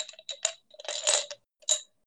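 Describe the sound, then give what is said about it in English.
A handful of dice is poured out onto a table during a tabletop game, clattering and rattling in several quick bursts for a couple of seconds, fairly crisp, with no voices. “I'm just gonna pour all my dice out.”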